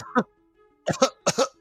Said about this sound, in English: Coughing. Actually, coughing is a very, very scary symptom these days.